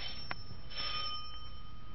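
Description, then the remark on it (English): A house's front doorbell rings at about 8 o'clock at night with a steady, bright metallic tone lasting the full two seconds, set against a low background hiss and a couple of soft clicks. “Front door!”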